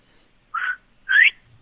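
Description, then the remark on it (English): A quail whistle is blown twice, giving two short, breathy, mid-pitched chirps about half a second apart, the second sliding upward in pitch. No voices, just the two calls against near silence. “He actually gave us a quail whistle.”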